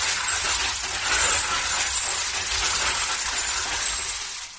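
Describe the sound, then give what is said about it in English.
A crank-operated glass-breaking sound effect device, its crank turned to keep the glass moving around like bottles breaking, churns out a steady, continuous crunch and clatter of tumbling broken glass, loud, with no pauses, fading briefly at the very end. “So you turn one crank basically to get the glass kind of moving around per bottle breaking.”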